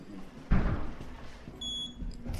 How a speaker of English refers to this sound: Feels as if we're going into an airlock. Yeah, it's very high security here. Past two automatic doors. Yeah, two automatic doors.